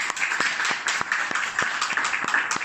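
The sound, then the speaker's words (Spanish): A church audience applauds together for the Lord, a dense, steady wash of many hands clapping at a fairly even loud level, with sharper individual claps punctuating it throughout. “Vamos a darle palmas al Señor por eso.”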